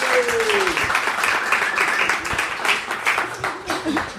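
A crowd breaks into sustained applause, dense clapping steady and loud across the whole stretch, with scattered cheers and voices mixed into the noise.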